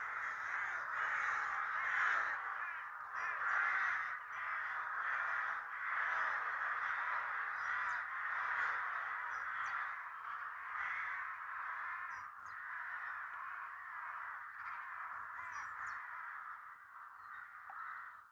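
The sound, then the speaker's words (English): A large flock of crows caws all at once, a dense, continuous chorus of harsh overlapping calls that stays loud for most of its length before thinning slightly as the birds take off together across the sky towards their roost for the night. “And off they go, a river of sound and ragged wing beats.”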